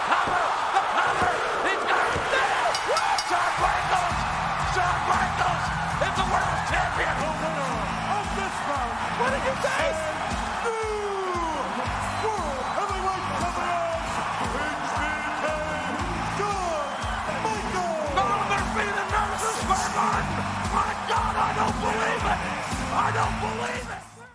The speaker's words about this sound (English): That is a huge pop from that crowd. I think they were in Madison Square Garden for that. Mm. And it's a huge, huge pop. I mean, that building comes unglued, as JR would say.